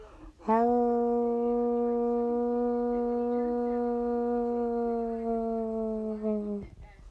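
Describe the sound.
People imitate a wolf howl with one long, steady, mid-pitched note held for about six seconds, dipping slightly in pitch near the end before cutting off abruptly.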